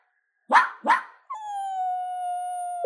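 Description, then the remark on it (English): A puppy in its cage gives two quick, sharp barks, then lets out a long, steady high-pitched whine that holds for over a second before breaking off. No one speaks. “Ay, mi amor, make him stop. I didn't want the damn dog to begin with.”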